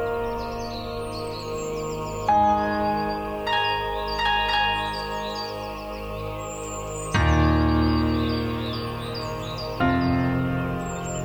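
Bright dawn-chorus birdsong, sung just before sunrise, chirps and trills in quick high sweeps, layered over sustained piano chords that swell in with several strong entries throughout, ascending from low to high tones.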